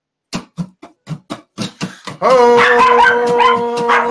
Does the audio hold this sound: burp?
no